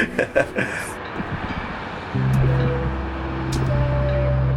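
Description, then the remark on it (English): Car Beat, a sound art piece by Georgi set up on a bridge where each vehicle passing under triggers a musical event: a few sharp percussive hits give way to a low rumbling wash of passing traffic, overlaid with sustained droning electronic tones that swell in. “It's what you can hear playing right now. In this, he created a setup on a bridge where every time a vehicle passes under, a musical event gets triggered.”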